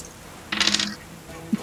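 Three dice, rolled for an athletics check in a tabletop game, clatter briefly across a hard tabletop in a quick, rattling burst of clicks, fairly loud, followed after a pause by a single soft knock.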